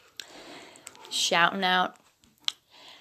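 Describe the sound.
A few scattered, sharp computer keyboard clicks tap at irregular intervals, fairly quiet, with a short burst of voice sounding in the middle.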